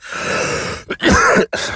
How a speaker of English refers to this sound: Excuse me. See, I had to cough that bullshit up.